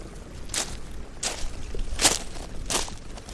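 Four crunchy footsteps on gravelly ground, evenly paced at a slow walk, each a bright, gritty scrunch over a faint low rumble, with no talking.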